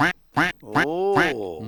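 A series of loud duck quacks in quick succession: several short nasal honks, then a longer, drawn-out raspy quack trailing off at the end. No voices are present.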